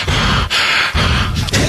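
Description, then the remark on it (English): A voice imitates heavy breathing as part of a Mark Wahlberg impression: loud, rough, airy breaths in a steady rhythm, about three forceful exhales and inhales with brief gaps, no words spoken. “Half the impression is simply heavy breathing.”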